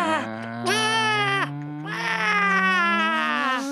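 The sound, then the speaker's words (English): A person imitates pigeon cooing as a count-in before a shouted 'boom', producing two drawn-out, wavering warbles, the second one longer, with a strong, reedy tone over a low steady hum. “Just because I don't like the pigeon noise that happens before he does the boom.”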